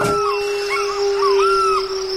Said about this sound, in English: Is that a wolf?